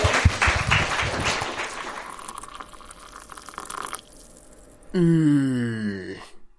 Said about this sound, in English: Oh, well, thanks very much. Round of applause, please,